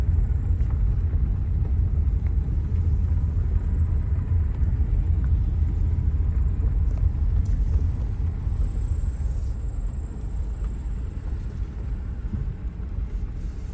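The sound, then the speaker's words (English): A steady, loud low rumble of a car driving along a trail opened by Jefferson County Conservation, passing under the highway near the junction of 34 and 163, continuous for the whole stretch and easing slightly toward the end, with no voices. “Obviously, you don't usually get to drive your car on this trail.”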